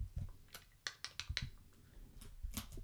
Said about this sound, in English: The screen goes into sleep mode, and then we have to type in the password again. And the computer's at a weird angle, so you probably heard me typing all of that. Apologies. And my keys are sticky because I spilled alcohol on them.